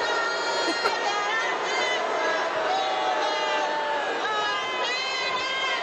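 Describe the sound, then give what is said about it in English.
A large crowd boos Roseanne as she sings, loudly and without letup, a dense roar of many sustained, drawn-out voices that fills the whole stretch at an even level. “They booing the shit out of her.”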